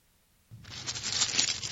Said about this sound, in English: Paper! Is she unwrapping it?